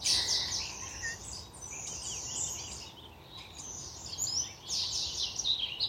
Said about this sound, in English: The birds are singing in this day. I found a little remnant forest here.